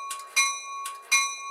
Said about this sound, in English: Do you guys have like a little chime, ding, ding, ding, buzzword? Actually, I'll put it in there.